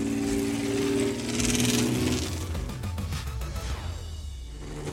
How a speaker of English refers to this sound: Well, it sounds like, as you can hear, the cars are getting ready to go.